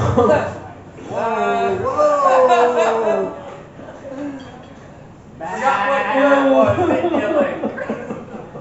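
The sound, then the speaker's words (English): A person at the Dayton Poetry Slam's June sheep slam imitates a bleating sheep, producing two long, quavering baa-like calls separated by a short pause, loud into the microphone. “The sheep slam.”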